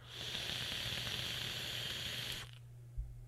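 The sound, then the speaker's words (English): Steady crackling sizzle of a vape coil firing during a draw, lasting a couple of seconds before cutting off abruptly, followed by a low hum and a soft thump. “That is straight up helicopter mouth crackle. That crackle is so deliciously good.”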